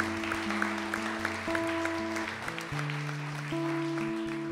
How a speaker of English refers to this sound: Give him a big round of applause. Come on.